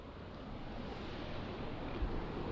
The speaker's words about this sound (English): Now we're at a feature of the monastery grounds here, a series of waterfalls along a fairly significant stream falling away and running down into the Little Brosna.